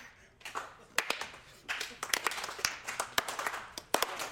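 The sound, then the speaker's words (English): Scattered, half-hearted clapping from a small crowd: uneven sharp claps at irregular intervals, some louder strikes standing out, thin and sparse rather than a full round of applause. “I'm going to make this the worst clap I've ever.”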